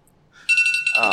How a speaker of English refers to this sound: You still ain't muting your phone? We're 230-some episodes in, and I had a timer set for the laundry, dude.